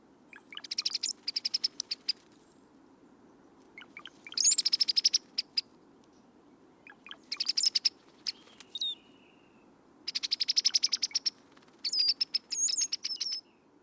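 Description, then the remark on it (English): A bird sings in repeated bursts of rapid, bubbling, liquid, gurgling notes, each phrase a couple of seconds long with short pauses between, clear over a low steady background hum. “Apparently, with much labor and effort, they gurgle and blubber up out of him, falling on the ear with a peculiar, subtle ring, as of turning water from a glass bottle, and not without a certain pleasing cadence.”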